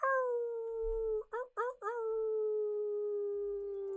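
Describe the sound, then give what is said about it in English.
A person imitates a wolf howl: one long sustained vocal tone broken midway by a few quick yelping breaks, then held steady to the end, fairly loud. “Finish off with a wolf howl with me.”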